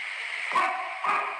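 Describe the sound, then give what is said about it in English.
Two quick dog barks about half a second apart, small and tinny, a recording played from a phone held in front of a microphone, over a steady background hiss with no one talking. “Can you hear that? It sounds like a dog.”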